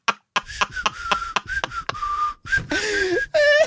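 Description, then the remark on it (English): A person whistles down the middle of the tongue with their mouth wide open, holding a thin, airy tone at a steady pitch that is broken up by short breathy puffs, then swoops downward and wavers near the end. “That's me whistling down the middle of my tongue.”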